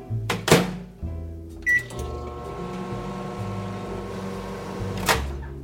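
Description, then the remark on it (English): A microwave oven partially thawing a frozen English muffin starts up: a few button clicks and a short beep, then a steady low electric hum with a faint whirr runs until another sharp click near the end. “So I am going to grab an English muffin from the freezer, give it a partial thaw in the microwave.”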